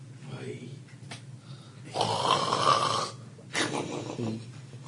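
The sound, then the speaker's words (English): A voice imitates snoring with two drawn-out, rasping breaths, the first longer and louder, the second shorter, with faint background noise between. “He's snoring.”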